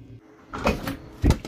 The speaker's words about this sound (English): All right, I'm gonna open the door, but this time, do not scare me.